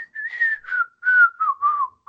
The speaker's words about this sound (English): That was probably a can't really hear my good whistle. Yeah. Hey, 10 years of flute lessons taught me how to. 10 years of flute lessons taught me how to whistle. I don't play flute anymore, but I can whistle.